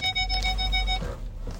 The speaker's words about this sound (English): You may be hearing some beep because I'm backing into my garage.